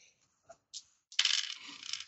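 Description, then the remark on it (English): A couple of light clicks, then a sustained bright clatter of dice tumbling and rattling across a hard tabletop for about a second, fairly loud, with no voices; the dice are rolled for a science roll in a game. “Can I look at this notebook armed with the knowledge of the star charts I saw earlier and see if I can get a science roll on this one?”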